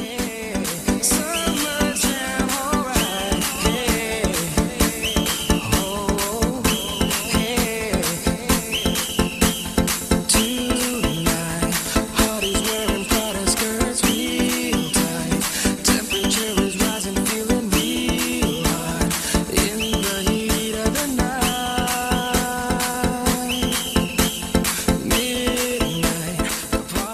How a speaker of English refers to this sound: And I must warn you, before I play this song, it has some of the most obnoxious use of a whistle that you will ever hear in a song.